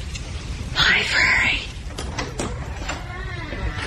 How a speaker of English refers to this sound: Slipping inside and closing the door behind him, he begins to feel his way about the room.